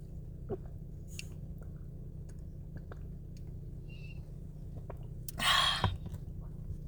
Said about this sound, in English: So what I really want to talk about today, let me take a drink of my water really quick.